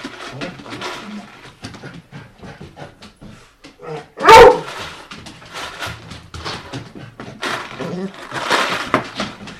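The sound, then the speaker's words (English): An excited dog lets out a sharp, loud bark in the middle, with a man talking steadily before and after it and a few fainter yips underneath. “Because it's going to take too long for this dog. So don't clip the leash on the dog because he's expecting you to do that.”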